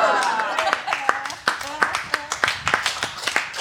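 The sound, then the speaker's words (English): An audience claps steadily as a show begins, a dense patter of sharp handclaps at a moderate level with a few voices and whoops mixed in underneath. “All right, give a big, big round of applause and let's start this show!”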